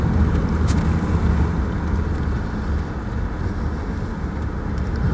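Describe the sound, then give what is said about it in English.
A car pulls into the empty parking lot of a Dominion Power and First Energy electricity-generating facility in Virginia on a spring Saturday, with a steady, low engine and road rumble that holds even throughout and a faint higher hiss above. “All right, so I'm pulling into the facility, pulling into the parking lot.”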